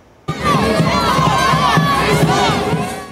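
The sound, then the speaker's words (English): A large hometown stadium crowd of 11,144 fans at BC Place roars and cheers continuously at a Whitecaps soccer match against LA, a dense wash of many voices with whistles and shouts rising over it, loud and sustained after an abrupt start. “the Whitecaps clearly benefited from playing before a hometown crowd last night, something the team hadn't been able to do in more than 530 days.”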